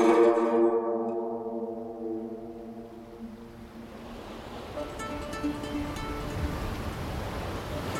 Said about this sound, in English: The Rosalind cut through the waves like an unsheathed cutlass, land having long since disappeared below the horizon behind her. Her decks were alive with men, darting this way and that, pulling ropes to adjust the sails